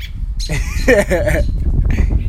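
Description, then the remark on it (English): Loud, harsh bird squawks burst out in quick overlapping calls, raucous, like birds fighting, over a steady low rumble of background noise. “Hey, nigga, these motherfuckers sound like they fighting.”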